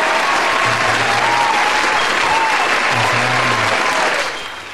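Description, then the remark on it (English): Loud, dense audience applause welcoming a guest in Texas, with a steady wash of clapping that fills the whole stretch, a few faint voices mixed in, before it tapers off at the very end. “That was like a big applause.”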